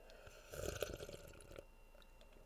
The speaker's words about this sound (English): Please excuse me while I sip this Kermit tea.